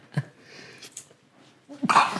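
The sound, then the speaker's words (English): A single forceful sneeze bursts out near the end, preceded by a brief sharp intake and a quiet stretch of breathy noise. “Bless you.”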